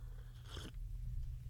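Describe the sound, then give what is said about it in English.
A short slurping sip of coffee, lasting about a third of a second, heard over a steady low background hum with no talking. “Sorry, sip of coffee.”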